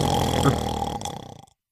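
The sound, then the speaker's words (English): A voice imitates the deafening roar of a Tarasque: one loud, guttural, rasping growl that holds for about a second and a half, then cuts off abruptly into silence. “Can you imagine the deafening 15. Roar of a Tarasque?”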